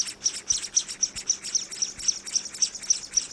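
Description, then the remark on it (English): A scaly-breasted munia (Loncura punctulata, also called spice finch or nutmeg manakin), a tiny bird, gives a rapid, steady series of thin, high-pitched chirps, about twenty short notes in a few seconds, clear with no voices. “Scientists have studied this sort of behavior in a tiny bird called the scaly-breasted munia, Loncura punctulata, also known as the spice finch or nutmeg manakin.”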